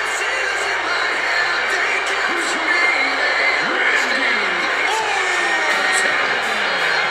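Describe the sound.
Artificial crowd noise from a wrestling broadcast of the Edge versus Randy Orton match, with NXT wrestlers outside as the fans: a dense, steady roar of many overlapping voices with scattered cheers and whoops, holding an even, fairly loud level throughout.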